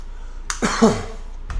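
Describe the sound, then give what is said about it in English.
A brief sip of water followed by a soft gulping swallow, bracketed by faint mouth clicks. It is fairly quiet, with no one talking. “Just a quick sip of water here.”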